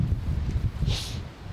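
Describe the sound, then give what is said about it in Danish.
Wind buffets the microphone outdoors by the sea at a seal enclosure on the Kattegat, a steady low rumble with gusty fluctuations and a brief airy hiss rising partway through. “Det kan være, der ikke blæser så meget.”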